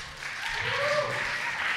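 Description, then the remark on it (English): An audience applauds a storyteller being introduced at a storytelling event, a dense, steady wash of clapping that swells slightly and holds at a moderate level throughout. “Please, don't clap yet.”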